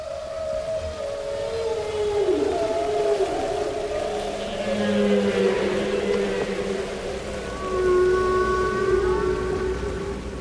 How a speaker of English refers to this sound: At onbeing.org, listen to Katy Payne's recordings of the songs of humpback whales and the percussive rhythms of elephants in the wild.